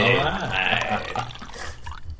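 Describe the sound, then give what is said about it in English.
Grinter Ale is poured in a steady gurgling stream into an opened pouch for about a second, then trails off into quieter dripping and faint background murmur. “Open your pouch. Open my pouch. He pours it in.”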